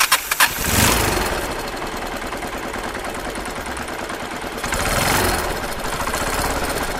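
The engine of a homemade prototype car, built from scratch, sputters and cranks a few times, then catches and runs with a rough, rattling idle, revving up twice, with no talking, in Lilongwe, Malawi.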